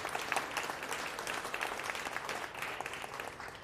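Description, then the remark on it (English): A crowd applauds the panelists at an evening panel discussion, a dense wash of many hands clapping at once, fairly loud and sustained throughout with no speech over it. “So a big round of applause for our panelists tonight.”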